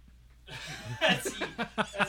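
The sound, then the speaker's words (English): A drunk person's fairly loud voice lets out a quick run of about five sharp hiccup sounds, each a short voiced yelp, spaced unevenly with no talking in between. “No, that's my drunk hiccup sound.”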